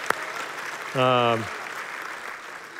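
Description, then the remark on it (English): Steady applause, a dense crackling wash of many hands clapping throughout, with a brief falling cheer from a voice rising over it near the middle. “You guys are getting some applause there.”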